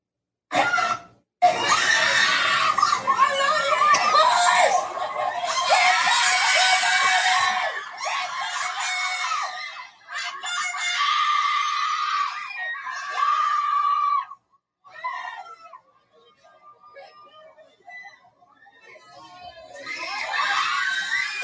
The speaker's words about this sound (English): Look at all them Black kids. Oh, God, I can't take the screaming.